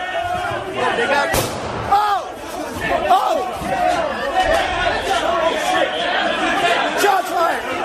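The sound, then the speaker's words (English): A single sharp gunshot from a plainclothes officer cracks out early, cutting through a dense, agitated crowd of rioters whose overlapping shouts and yells continue loudly and steadily all around. “But as that plainclothes officer shoots, there is a civil disturbance unit of officers armed directly behind him.”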